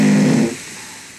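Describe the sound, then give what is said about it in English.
A single loud, low, buzzy fart made during sleep and recorded overnight, lasting about half a second, cutting off abruptly and leaving a faint hiss, with no voices. “It's a sleep fart.”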